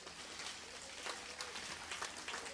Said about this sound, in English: Then give the Lord a clap offering.